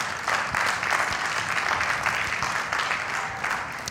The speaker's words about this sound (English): And we just clapped more for that than we did frisbee golf. So that's good. That's really good.